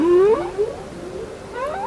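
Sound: humpback whale song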